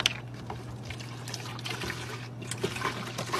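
Soda being poured steadily into a container not meant for drinking out of, a continuous fizzy trickle and splash over a faint low hum, with no voices.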